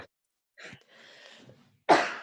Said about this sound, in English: Gosh, I am so sorry. I'm coughing so much.